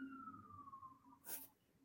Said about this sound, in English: I hear them sirens.